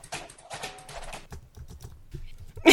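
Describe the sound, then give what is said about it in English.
Rapid clicking of keys on a computer keyboard as someone types a search into Google, fairly quiet, in an uneven run of taps with a brief louder burst of noise at the very end. “Sorry, I'm just typing something into Google.”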